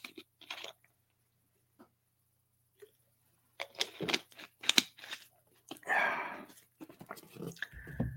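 Someone takes a sip of water: a few quiet clicks and pauses, then a cluster of slurping, swallowing and container-handling noises, with no talking.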